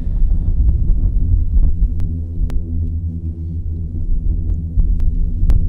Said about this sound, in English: That's actually a sand avalanche, would you believe? That's caused by the vibrations of all the sand molecules moving as they tumble down the side of a sand dune.